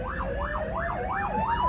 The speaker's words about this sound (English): So I'm just looking at an ambulance in front of me. Oh, thank God he's doing a U-turn. And you'll hear the wonderful sound of an Aussie emergency siren.